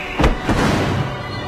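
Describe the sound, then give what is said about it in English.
A parasol snaps open with a booming, thunder-like sound: two heavy low thuds in quick succession, followed by a lingering rumble that slowly fades. “it's like thunder echoing off the canyon.”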